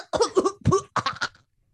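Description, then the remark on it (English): A voice imitates a wet, hacking cough as if hacking up a loogie, three or four harsh guttural bursts in quick succession, fairly loud, ending in silence. “accidentally flings off his mask and coughs a loogie into Squidward's eye”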